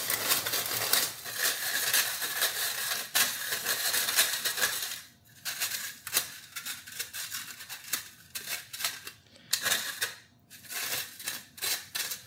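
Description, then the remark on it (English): A cup and a quarter of lumpy granulated sugar being sifted onto parchment paper to remove hard bits: a steady gritty rustling with rhythmic shaking scrapes that pause briefly a few times near the end. No one speaks. “All right, I sifted it on a piece of parchment paper.”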